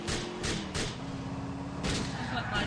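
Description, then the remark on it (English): Video game gunshots in Grand Theft Auto crack out in an irregular string of about five loud, sharp bursts, spread over a steady low rumble like a running engine. “Why don't you shoot the guy that's driving the car? This is Grand Theft Auto. You shoot things.”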